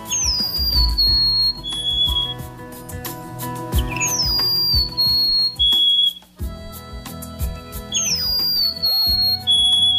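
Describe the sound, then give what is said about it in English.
A golden-crowned sparrow sings three times, each phrase a high, clear whistle sliding downward and then a lower held note, with a steady low rumble of background noise underneath. “Here's a bit of that song.”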